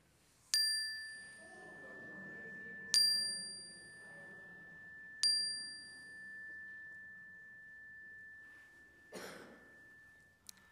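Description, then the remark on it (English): A bright chime is struck three times, a couple of seconds apart, each tone ringing on and overlapping the last, over soft murmuring voices speaking aloud names of people and places held in prayer; a cough follows near the end. “And as the chime rings, speak them aloud so that we can hold them with you.”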